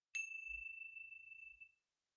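A single bright meditation chime is struck at the end of a guided meditation from the Balanced Mind Meditation Center and rings out with a clear, sustained tone, slowly fading over about a second and a half in otherwise quiet surroundings.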